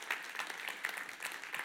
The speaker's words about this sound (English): Come on, can you give them a great big hand clap as well? Wow.